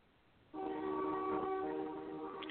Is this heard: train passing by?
yes